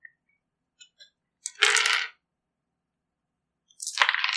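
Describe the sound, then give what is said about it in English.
A few small clicks, then two bursts of hard clattering as dice are rolled and tumble across a table during a tabletop game, each about half a second, fairly loud with quiet between them. “I actually rolled an even number.”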